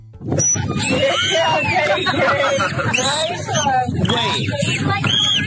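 A high human squeal gives way to a dolphin's whistles, a busy run of rising and falling chirps, fairly loud over a steady murmur of crowd chatter.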